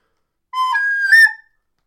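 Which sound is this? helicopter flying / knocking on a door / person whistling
person whistling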